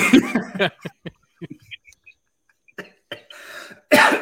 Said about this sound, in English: Now you're making me cough.